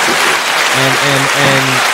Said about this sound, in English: We just want to give you your flowers and hand claps. You feel me? Clap for you.